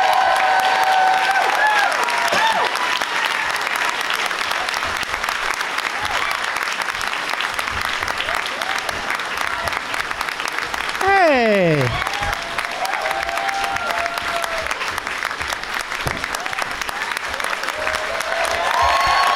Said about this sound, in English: I wonder if the VR people are clapping. Are they just sitting there?